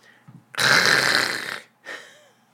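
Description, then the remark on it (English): A voice imitates a dial-up modem to describe a band's live jam: a loud, harsh, hissing screech lasting about a second, followed after a brief gap by a shorter, fainter burst of raspy noise. “And it just sounds like a dial-up modem for like 6 minutes.”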